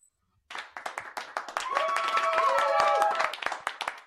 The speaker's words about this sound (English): Thank you, thank you. Hold the applause until the end of the show.